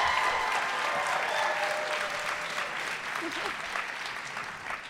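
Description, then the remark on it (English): An audience bursts into loud, sustained applause, a dense crackle of many hands clapping at once that stays strong for several seconds before easing slightly, with a few voices mixed in. They are clapping to show they have seen the show Hamilton. “I think it means something that there's not a huge number of people clapping, but they clapped very loudly.”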